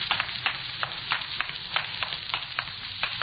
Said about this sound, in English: You hear water running? Sounds like it's coming from inside.